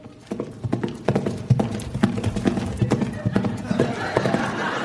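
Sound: horse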